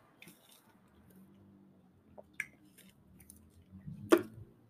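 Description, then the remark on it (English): Quiet sipping from a drink: soft wet mouth noises and small clicks, then a louder gulping swallow near the end, with no talking. “hold on, I'm going to take a sip.”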